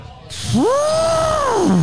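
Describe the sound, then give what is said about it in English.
A person trumpets like an elephant with their voice: one long, loud, nasal call that sweeps sharply upward in pitch, holds high and strained, then slides back down at the end. “Let me hear your elephant.”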